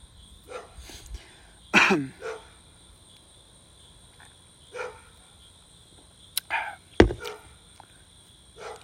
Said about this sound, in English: There it is. There's a dog. Big ass dog.